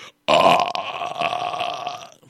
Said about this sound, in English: Had two pickles, fool. So pickles give you the burps?